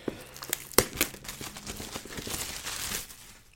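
Crinkling and tearing of plastic shrink wrap being pulled off a new box after a corner is bitten, starting with a few sharp crackles and then a longer, steady rip with rustling. No voices are heard.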